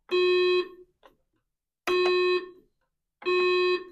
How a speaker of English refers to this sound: So teams can buzz in. Let's check those buzzers. So let's start with the yellow team.